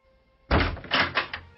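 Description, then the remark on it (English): A door slams with a heavy thud that stops abruptly, followed by a few quick rattling knocks and bumps as it jams against a person's foot and shudders. No one speaks. “Would you please remove your foot from my door?”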